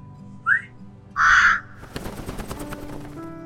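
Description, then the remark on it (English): A crow caws twice, a short call followed by a longer, louder harsh caw, with a jumble of clattering background noise afterward. “Come on, bird.”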